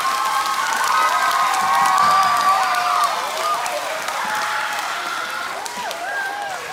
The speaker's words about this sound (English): Yeah, round of applause.